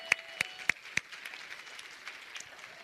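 Four sharp, evenly spaced claps ring out up close, then fade into light, scattered applause from a small audience, fairly faint with no one talking.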